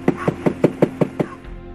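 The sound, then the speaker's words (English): Seven evenly spaced knocks rap on a hollow travel trailer door, fairly loud, in a quick steady rhythm that stops abruptly, with no voices. “Let me just knock on his door.”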